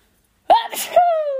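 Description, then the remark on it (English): A single loud sneeze: a sharp voiced intake bursting into a noisy explosive burst, trailing off into a sustained vocal tone, with no other sounds around it. “Okay, I need to sneeze, hold on.”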